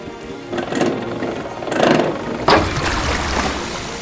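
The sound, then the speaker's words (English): A valve is turned and a water pump with copper pipes starts up, pumping water out of a city center into the canals. It settles into a steady low, droning chug, with a few hissing bursts of rushing noise layered over the hum and no voices. “It's for pumping water.”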